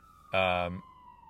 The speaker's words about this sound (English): You're about to hear a siren go by. I promise I didn't arrange this. But yeah, there's the siren, all right.